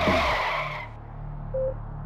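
Tires screech loudly as Puff's driver floors a Suburban truck, peeling out and speeding off toward Cedars-Sinai Hospital; the squeal fades within a second while a deep, steady engine rumble carries on alone.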